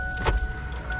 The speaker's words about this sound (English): Can I roll down a window?